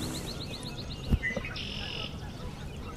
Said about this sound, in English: Hopefully the kinglets come this way. Oh, I actually hear one.